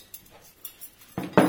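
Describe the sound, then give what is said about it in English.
Cutlery and wine glasses being laid out on a table during a butler training class on table service at the Bespoke Bureau: a few light metallic clinks, then two louder clatters near the end, with no talking. “taking a class through table service. That is, the correct way to lay out cutlery and wine glasses, how to serve drinks, and how to open a champagne bottle.”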